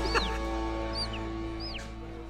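A short show sting plays: three or four quick, high chirping swoops like bird whistles over a steady, sustained tonal drone, at a constant moderate level with no talking.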